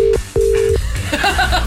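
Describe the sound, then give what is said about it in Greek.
A phone line rings unanswered with steady electronic tones in short bursts separated by brief gaps, clear, then gives way to muffled background noise. “Καλά, δεν το σηκώσει”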